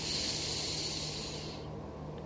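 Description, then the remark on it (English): A single deep breath drawn in, a steady airy hiss for about a second and a half that then fades away, with no talking. “Taking a deep breath in”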